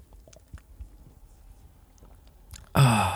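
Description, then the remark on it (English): Someone sips and swallows cold water: a few soft, wet mouth clicks and gulps, then a sudden loud, breathy exhale of satisfaction at the end. “I got to take a sip of water first.”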